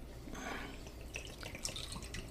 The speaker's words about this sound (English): Oop. That's a big pour. It is. You're spilling everywhere. It's a little more than I wanted. You're spilling everywhere, buddy.